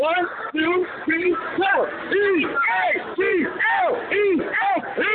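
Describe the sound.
A crowd of fans shouts the Eagles chant during a live radio broadcast, a string of rhythmic, rising-and-falling yells in unison, steady and loud throughout, with several voices layered together.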